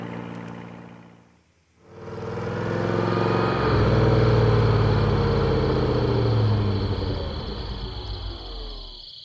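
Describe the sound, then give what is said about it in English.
A car engine drones steadily with harmonic, mid-pitched tones that swell and then slowly wind down as the vehicle slows to a stop to put water in the radiator, after a brief dip at the start. “What are we stopping here for? I gotta put some water in the radiator.”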